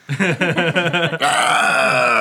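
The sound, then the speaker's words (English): A voice imitates a triumphant T-Rex roar: a run of quick, rhythmic guttural grunts builds into one long, loud, sustained bellow that holds steady to the end. “I will let out a triumphant T-Rex roar.”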